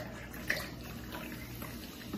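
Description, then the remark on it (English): Soda pours steadily into a cup, a continuous splashing, fizzy rush of liquid that stays fairly even for a couple of seconds, with no talking. “Probably should have poured with the other hand.”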